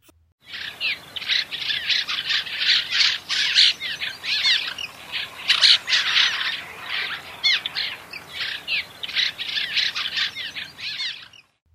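A steady stream of creaky, squeaky chirps and twitters from cliff swallows, many calls overlapping in a busy chatter that runs throughout, moderately loud.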